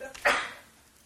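A single abrupt sneeze bursts out, sharp and fairly loud, then trails off quickly into quiet with no talking around it.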